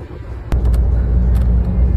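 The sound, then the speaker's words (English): The engine of a doggy daycare bus carrying about 10 dogs rumbles low and steady, growing louder after a sharp click, with faint rattles and thumps over the continuous drone, as if heard from inside the bus. “For those of you listening to the podcast, there's 10 dogs on the bus?”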